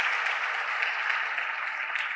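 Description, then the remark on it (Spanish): An audience breaks into loud, sustained applause for the Lord, a dense wash of clapping that holds steady throughout with no one speaking over it. “Dale un aplauso fuerte al Señor en este día.”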